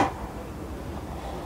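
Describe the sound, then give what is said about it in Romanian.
A single sharp, loud sneeze bursts out at the very start, then quickly gives way to a low, steady hum with no talking. “Noroc. Mersi.”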